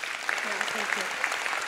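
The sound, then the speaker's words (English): A crowd applauds with steady, dense clapping that fills the short moment, while a voice murmurs faintly beneath the noise. “Let's clap it up for her.”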